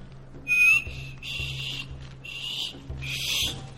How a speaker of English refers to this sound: You know, I'm still practicing that whistle. Do you mind if I try again?